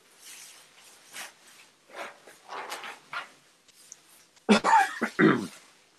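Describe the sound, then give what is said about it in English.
Rustling of stiff fabric, followed by a few loud, scratchy zipper pulls near the end as a person zips up a protective suit after putting on its hood. “And now I'll zip it.”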